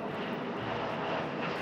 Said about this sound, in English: the nose of the Boeing 737 smash through the roof of a bungalow across the street. The plane bounced off the roof, wings slicing through treetops and brick, and then pitched toward them.